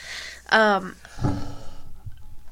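A single loud, harsh cough bursts out, followed by a quieter, rough throaty rumble and some faint breathy noise.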